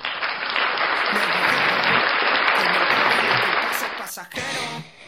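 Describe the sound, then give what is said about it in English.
A sustained burst of loud, dense clapping fills about four seconds like a crowd's applause, then cuts off abruptly into a brief, different noise at the end. “So let's give that song a round of applause.”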